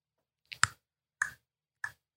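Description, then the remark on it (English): A person makes sharp clicking mouth sounds to imitate the ticking clock timer of the TV show 60 Minutes: three crisp, evenly spaced ticks, the first with a quick double onset, with silence in between. “I like how you try to make a clock sound.”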